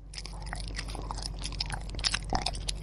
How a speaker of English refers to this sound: Come on, let's have something that sounds like orcas chewing off a rudder.